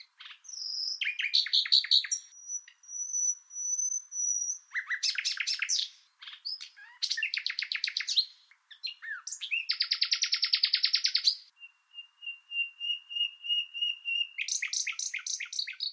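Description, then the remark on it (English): A nightingale sings alone and clear, cycling through varied phrases of rapid chattering trills, long pure whistled notes and a fast buzzy rattle, separated by short pauses. “such verve and with such virtuosity, you know I'm talking about the nightingale, and that would have to be the one.”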